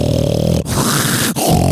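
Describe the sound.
A person imitates a loud snore: a harsh, rattling, low buzz held for nearly two seconds, broken by two very short catches into three gravelly pushes, with no words spoken.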